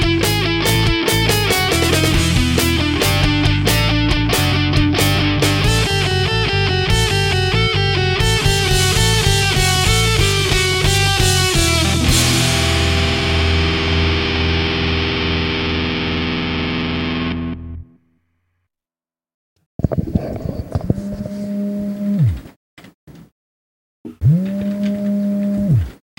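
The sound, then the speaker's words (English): A phone's vibration buzz, a harsh low droning hum caught by the microphone, comes in two bursts of about two seconds each after a long stretch of loud, distorted, cluttered noise. “You're vibrating into the microphone. Somebody's buzzing.”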